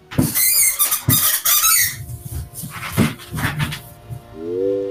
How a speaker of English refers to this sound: Might need to grease your chair